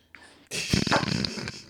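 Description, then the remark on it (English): A dog snuffles and scrabbles as it tries to get into a room, a rough, noisy burst lasting about a second after a faint brief sound. “Oh, my dog's trying to get in my room.”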